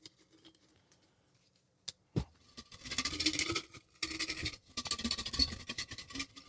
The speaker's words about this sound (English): There's right that ASMR for the crowd there. Shake that jar till the white stuff comes out. White stuff being paper. That's my joke.